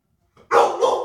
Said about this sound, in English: And for some reason, my dog is pawing at the door and barking, and I do not know why.